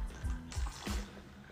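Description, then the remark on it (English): Someone takes a drink of water, with three soft gulps or swallows spaced evenly over a second, followed by a faint breathy pause. No one speaks. “Sorry, I gotta have some water.”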